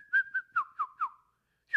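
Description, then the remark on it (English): A person whistles a quick series of five short, descending chirpy notes in an even rhythm, then a brief pause and one more rising note, clear with no talking. “No, it's called a whistle.”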